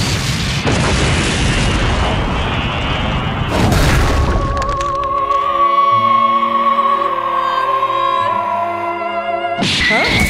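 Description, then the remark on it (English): Loud explosions from a Big Bang Attack energy blast boom and rumble in close succession, giving way to a sustained, wavering electronic hum before another sharp burst cuts in at the end. “That's it, killing you both! Big bang attack!”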